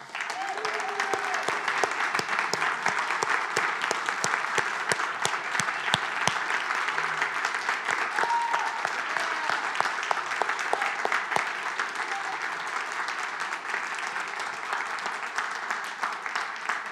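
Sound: audience applauding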